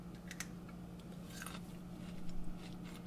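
Soft crunching of someone chewing freshly trimmed crisp pea shoots grown on a coconut mat, with a handful of brittle bites spread irregularly across a few seconds over a steady low hum; no one speaks.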